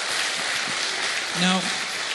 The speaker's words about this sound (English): Come on, clap. That's good. We love you guys.